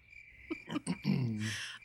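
A crickets chirping sound effect: a steady, high, continuous trill throughout, fairly faint, while brief throaty, voice-like bursts and a hiss rise over it in the second half.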